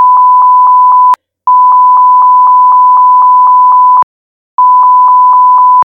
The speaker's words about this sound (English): Is that an edit? That's not going to the show. That can just be a long beep.